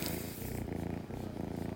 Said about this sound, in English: There's Winks purring like hell if you can hear that.